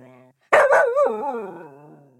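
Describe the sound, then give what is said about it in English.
A dog lets out a couple of loud barks that stretch into a long, wavering howl fading away, after a brief quieter whine at the start. “I can't film if you're down there barking. You'd be too noisy.”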